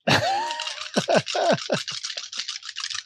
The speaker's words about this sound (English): I love the sound of dice in the night. There's the triumph I wanted.